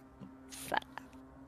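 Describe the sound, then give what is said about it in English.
A single quick sneeze: a short breathy intake swelling into a sharp, hissy burst, then a faint trailing exhale over a low steady hum. “Bless you.”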